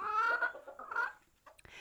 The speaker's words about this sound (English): Well, there are the birds. Look, if you could see them, you would see that the birds would be eating the food that was given to them. The food that fell down from the trees, and they're eating seeds, and oh, they're finding worms in the ground.